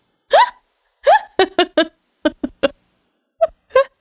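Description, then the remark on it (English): A person trying to sneeze makes about ten short, sharp voiced gasps in uneven bursts, the sneeze never quite coming out, with no talking. “No, I was trying to sneeze.”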